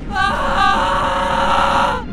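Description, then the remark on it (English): A woman lets out a loud, sustained high-pitched scream lasting about two seconds, with a slight waver partway through before it cuts off. “And then the electricity bursts from the arrow, and she lets out a scream.”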